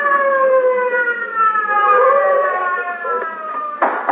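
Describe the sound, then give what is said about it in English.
A police car siren wails loudly and steadily as the car is driven to the scene of an occurrence, its rising and falling harmonic tone sustained throughout, with a brief burst of noise near the end. “I got into the car and was driven to the scene of the occurrence with siren wide open.”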